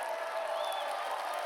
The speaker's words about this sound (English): Give the Lord a clap and a shout like you got that.